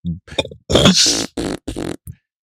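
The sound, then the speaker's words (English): Loud, wet fart noises that a small girl blows against her own arm, a quick burst of short sputters followed by a long flapping raspberry and several shorter ones, with no talking. “decided to make fart noises on her arm really loud.”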